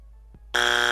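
A harsh, loud electronic buzzer sound effect, used to mark skepticism, blares suddenly after a brief near-silence, holding a steady, rasping tone rich in harmonics until the end.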